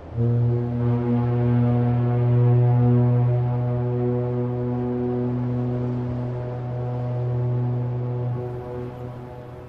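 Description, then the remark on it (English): A single long, deep horn blast, a video game's goal celebration honk played when a goal is scored, drones steadily for nearly ten seconds at a loud, even level, rich in harmonics, with no voices present. “There's a honk.”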